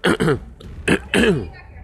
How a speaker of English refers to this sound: Sorry, clearing my throat. Sorry about that, everyone, for having to hear that in your ears.